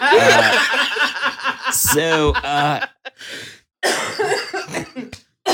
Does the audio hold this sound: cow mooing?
no